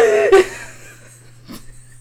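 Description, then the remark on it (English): A person imitates the strained, wheezy gasp of someone whose nose is being held shut: a voiced, choked intake that cuts off sharply, followed by a quieter breathy gasp about a second later. Fairly loud, with no talking. “He was trying to get me. She gasped me.”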